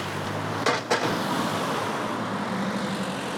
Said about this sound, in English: Well, I'm just going to be a bit nosy. I'll just let these cars pass.